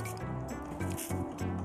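Someone sips a Pepsi, drawing liquid in with a wet, slightly buzzy slurping tone that shifts pitch in a few short pulses, moderately loud and with no talking.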